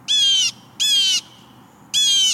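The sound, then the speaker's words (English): Three loud, raucous blue jay calls at a bird feeder, each a harsh, buzzy jeer lasting under half a second, spaced with short pauses, with no one talking. “When you hear a raucous call and see a bold flash of blue swoop to your bird feeder, you'll know a jay has arrived, and all the little birds dart for cover.”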